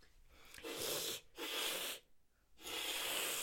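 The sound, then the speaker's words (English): People imitate a cat's hiss in a human hiss-off, with three loud, breathy hisses in a row, each lasting under a second with short pauses between them. No speech is heard. “that's how threatening a human hiss off is.”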